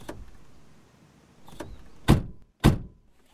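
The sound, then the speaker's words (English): Someone gets into a rented car: rustling and shifting, a soft click, then two firm thunks in quick succession as the seatbelt is fastened. No one speaks. “Now we can get in and buckle up.”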